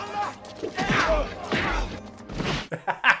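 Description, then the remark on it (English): Three heavy, punchy movie punching sound effects land in quick succession, each a loud whooshing smack with a low thud, followed by a few softer, sharper hits at the end. “if she had thrown the lobster trap at them and it made the same punching noise.”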